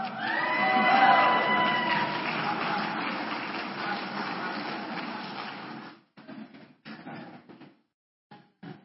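A church audience applauds after a scripture reading, a dense wash of clapping that swells in the first second, holds for about six seconds, then breaks off into a few scattered claps and fades.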